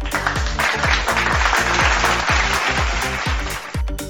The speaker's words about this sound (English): So with a round of applause, let's welcome